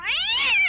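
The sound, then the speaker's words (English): A single drawn-out cat meow sound effect, bright, rising slightly in pitch and then falling away, heard on its own with no talking. “Can you hear the cat sound?”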